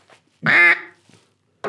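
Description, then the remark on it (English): A duck call gives a loud, nasal, mallard-like quack: one drawn-out raspy blast, a short pause, then the start of another quack. “try to do ticka ticka ticka ticka crack, but try to do you can put your feeds and your quack together. That sounds like mallard ducks.”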